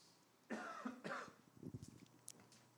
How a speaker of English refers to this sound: She said, if he coughs one more time, I'm bringing it up.